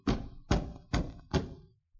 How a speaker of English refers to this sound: There was a terrible pounding on the door.